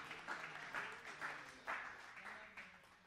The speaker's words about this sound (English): Would you give Him a hand clap of praise?